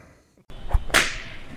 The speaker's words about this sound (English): Is that a flogger? Someone's gotta be having a good time.